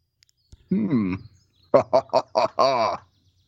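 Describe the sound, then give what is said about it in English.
A voice imitates a carrier pigeon approaching: one drawn-out, warbling coo, a short pause, then four quick clipped coos and a final longer one, fairly loud against silence. “One of the carrier pigeons approaches.”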